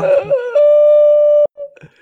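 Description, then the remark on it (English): A voice imitates a whale call: a wavering, moaning tone that slides, then holds one long, loud, steady note before cutting off, followed by a brief softer vocal murmur. “Please stop. Whale calls.”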